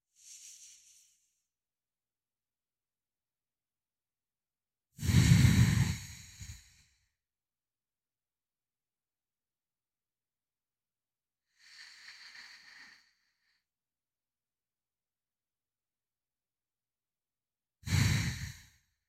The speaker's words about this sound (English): I'll give you some silence and some space to do that 5 box breath. 5 breaths in, holding at the top, releasing for 5, and then holding for 5. I'm going to do it with you.